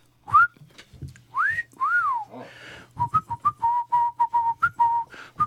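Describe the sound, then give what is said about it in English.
Lip whistling of the kind used to catcall, clear: a few swooping rising and falling glides, then a quick, bouncy run of short whistled notes at a steady pitch, with no talking. “Second way is the way that guys catcall women. It's through the lips.”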